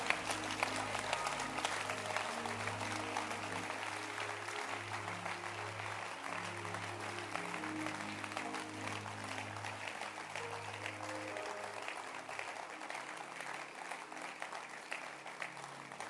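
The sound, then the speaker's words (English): An audience claps steadily, a dense sustained patter of many hands with some low musical tones humming underneath, holding an even level throughout without anyone speaking. “Can you clap your hands for this little book?”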